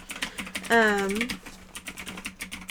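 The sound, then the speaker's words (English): Rapid computer keyboard typing as someone looks something up, a steady stream of light irregular clicks, briefly joined by a short hummed vocal sound partway through. “Listen to that keyboard clickety-clack.”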